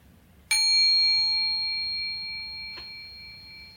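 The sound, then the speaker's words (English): A mindfulness bell is invited once for breathing together three times, giving a bright, clear tone with shimmering overtones that rings out and slowly fades over several seconds above a faint low hum. “So let us invite one sound of the bell and breathe together three times in order to enjoy ourselves, enjoy the kingdom we find ourselves in this very moment.”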